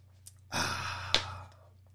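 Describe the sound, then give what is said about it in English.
A single airy slurp of someone sipping a drink, lasting about a second, with a small wet click partway through, then quiet with a faint low hum underneath. “I better take a sip on that one.”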